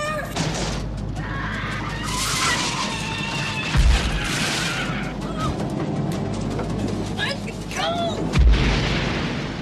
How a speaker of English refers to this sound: Explosion. Wes Craven's The People Under the Stairs.